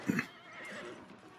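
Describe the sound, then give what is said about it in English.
A horse in a film gives a short, sharp whinny at the start, followed by a softer, fading tail of sound and faint clopping of hooves as it walks down stairs and slips on the first step. No one speaks. “so it makes me nervous when this horse walks down the stairs and he slips on that first step.”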